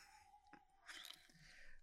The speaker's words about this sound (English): Dude, why are you crunching in the mic, man? Leave my Skittles.